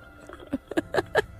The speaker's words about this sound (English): you were just slurping a cup of tea, weren't you